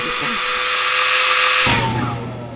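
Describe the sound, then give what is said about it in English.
A man's power drill whirs steadily with a bright, high-pitched motor whine; partway through a low thump cuts in and the motor's pitch sags slightly as it keeps running. “Kat watched as the man angrily shook his drill before slamming it down on his workbench”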